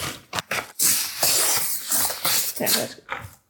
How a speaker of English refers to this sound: How do you want me to grease it? Oh, non-stick cooking spray. Second? Hey, how more. Much more do you want? More? Okay. Around the bag.